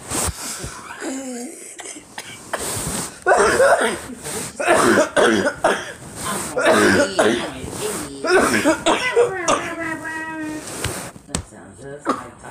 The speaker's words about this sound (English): I'm sorry, y'all. Coughing all into the mic